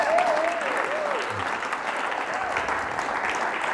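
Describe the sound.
A church audience applauding steadily, a dense wash of clapping hands at an even loudness throughout, with faint voices and a rising vocal whoop mixed in over the applause.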